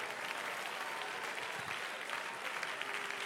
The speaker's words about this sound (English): Go ahead and clap your hands to Jesus.